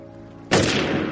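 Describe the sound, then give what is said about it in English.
A single loud gunshot in a film scene, shooting the character Fredo, cracks out of a quiet, low-humming background, striking abruptly with a full, sharp blast and then lingering in a rumbling tail. No one speaks. “We push in on Fredo, and then we cut back to Michael and the gunshot.”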